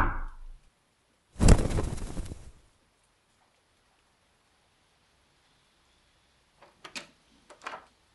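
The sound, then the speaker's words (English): A raven's wings flap in a loud flurry lasting about a second, followed after a quiet stretch by a few faint, brief flutters. “Did I hear wings? Oh, yeah, it was just that annoying raven.”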